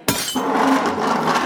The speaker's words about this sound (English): I pick up my rag, fill the glass with sand, and scratch the hell out of it.